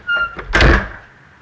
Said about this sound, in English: Just close the door and go back to work.